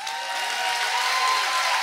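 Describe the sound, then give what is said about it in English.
An audience claps steadily, a dense wash of many hands with no break, holding a fairly even, moderately loud level and a faint murmur of voices mixed in. “I want you to clap your hands like you believe that.”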